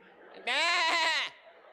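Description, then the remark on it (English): A person imitates a sheep with one loud, wavering bleat lasting under a second, with quiet background before and after. “Talking to the sheep.”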